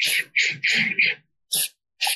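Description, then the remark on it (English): A run of quick, short sniffing breaths through the nose, taken as a breathing exercise: four rapid airy sniffs in a row, then a pause and two more spaced sniffs, moderately loud with no talking. “So taking a moment, finding yourself, being centered and breathing in through your nose, quick little bunny breaths.”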